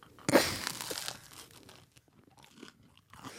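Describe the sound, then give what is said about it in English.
A loud crunchy bite into a toasted tuna melt sandwich, followed by several quieter, softer chewing sounds. No one speaks. “Okay, I'm going to take a bite of it.”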